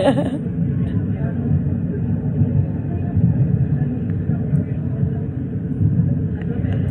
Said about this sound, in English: So here we are on the subway, guys.